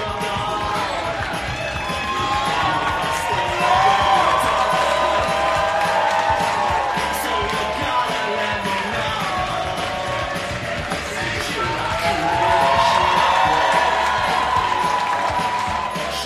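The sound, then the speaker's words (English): A large audience claps, whoops and cheers loudly and steadily for about sixteen seconds to welcome a performer on stage, with rising and falling shouted cheers over a dense wash of applause. “Please start clapping, whooping, cheering, and welcome”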